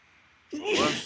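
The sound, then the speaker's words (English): A single loud sneeze erupts after a half-second of near silence, a sudden burst with a voiced, hissy blast that trails off quickly. “Bless you, dude. Bless you.”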